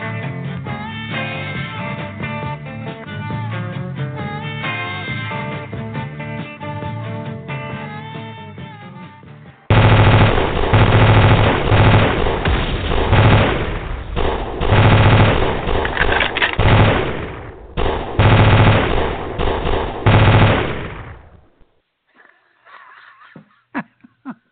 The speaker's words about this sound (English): That's what I need, a little action. That was about as long as the gunfire lasted at Twin Peaks.